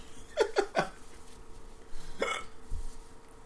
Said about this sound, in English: God damn it. Fucking hiccups. Drunk ups. That's a thing.